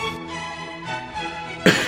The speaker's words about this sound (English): Oh, starting off with a cough? We can't cut that out.